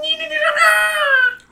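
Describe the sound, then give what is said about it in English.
A voice imitates the war cry of Spidey, a spider creature: one sustained, high-pitched, whining shriek lasting over a second, loud and steady, sliding slightly downward before cutting off. “Spidey lets out a war cry and leaps at you.”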